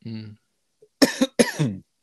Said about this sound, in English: I'll cut that cough. Keep it.